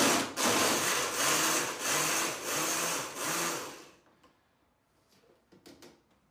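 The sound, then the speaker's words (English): A blender whirs loudly for about four seconds in pulsing surges, its motor droning with a gritty, churning roar as it mixes ice and berries into a mixed berry piña colada, then cuts off, leaving faint clinks and light clatter. “What we made here is a mixed berry piña colada.”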